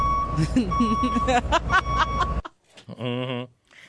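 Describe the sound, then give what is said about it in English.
A truck's reversing beeps sound over a dense, rumbling engine-and-crowd noise that cuts off abruptly, followed by a short warbling tone and a moment of near silence. “Okay, back this truck up.”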